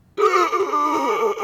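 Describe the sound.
A woman's voice lets out a strained, gasping moan, a foley performance of someone getting up gasping, loud and wavering in pitch, lasting just over a second after brief silence, with no other talk.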